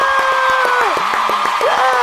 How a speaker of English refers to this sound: And insert loud applause. There it is.